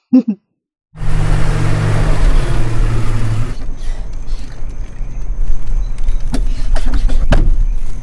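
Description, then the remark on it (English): A car door, on a car with a new Gorilla Glass windshield, slams shut with a sharp, solid thud after a stretch of creaking, rumbling vehicle noise, followed by another brief knock; no one speaks. “Dang, slamming that door.”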